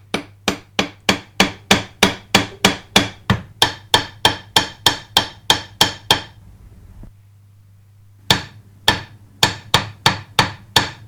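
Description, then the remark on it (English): Sharp hammer blows ring out in a fast, steady rhythm, about seventeen strikes, then a two-second pause before five more, with a low electrical hum underneath. “Hammer my body, hammer my head.”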